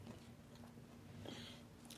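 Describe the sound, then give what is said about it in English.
Someone bites into a crunchy snack, with a few brittle crunches over a steady low hum. There is no talking. “Is it because your snack today is a crunchy snack?”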